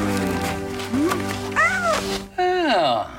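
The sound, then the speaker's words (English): A little orange kitten meows twice in high, wavering cries. The first is short and the second longer, sliding down in pitch, both clear over a steady low background hum. “It's like this little orange kitten and she looks so happy.”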